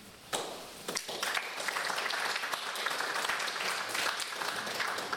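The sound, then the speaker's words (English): An audience at an evening talk breaks into applause as the speaker, a judge, is introduced: a dense crackle of many hands clapping that starts abruptly and holds steady at a moderate level for several seconds, with no voices standing out. “I'm glad you're clapping now.”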